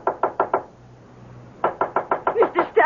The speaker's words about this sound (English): I can't open the door. It's locked. Well, knock on it. Knock.